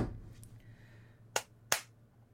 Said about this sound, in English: I clapped along with you.